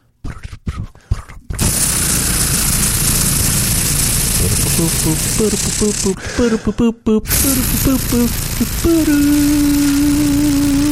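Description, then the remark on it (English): A helicopter's loud, steady whirring roar fills the scene, with voices calling out over the din and a low humming tone rising near the end. “Sound of a chopper.”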